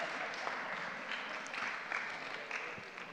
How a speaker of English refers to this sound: Amazing. Amazing. Right. Thank you. Give him all round applause.